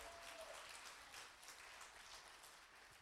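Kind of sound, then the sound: crowd, audience applause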